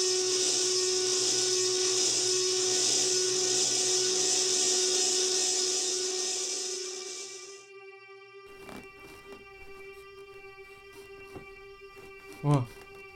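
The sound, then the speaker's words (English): A bone saw roars with a loud, steady, high-pitched whine for about seven seconds, then cuts off abruptly, leaving faint scattered clicks and a brief rising tone near the end. “The last thing David Peterson could remember is the roar of a bone saw.”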